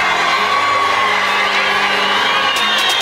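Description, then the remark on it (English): A huge crowd at University of Phoenix Stadium roars and cheers steadily during the official intro of Arizona Cardinals number 11, Larry Fitzgerald, a dense wall of shouting and whooping voices that stays loud throughout, with a few sharper bursts of yelling near the end. “Well, you know, in University of Phoenix Stadium, Larry, Larry, Larry.”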